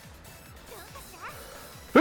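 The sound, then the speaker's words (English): A single sudden, loud sneeze bursts out right at the end, following a stretch of quiet, low murmuring and faint background noise. “Bless you.”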